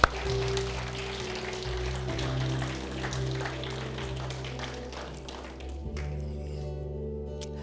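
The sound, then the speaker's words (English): A crowd gives God a hand clap in the morning after a prayer: a steady, dense, crackling wash of applause, with a sustained low keyboard chord humming underneath before the clapping thins out near the end. “Come on, we give God a hand clap this morning.”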